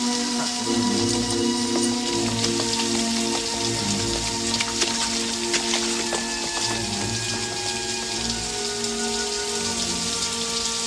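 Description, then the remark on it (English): Steady rain patters on a hard surface, a dense, continuous hiss of droplets with scattered sharper ticks, fairly loud, with low hum and faint tonal sounds underneath and no talking. “Rain delay. Bummer.”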